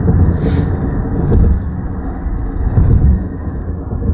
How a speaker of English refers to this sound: God damn it, are you going to try to hit me? All right, there you go. This car is not happy to be going as slow as he is, but I don't want him anywhere near me, so good day, sir.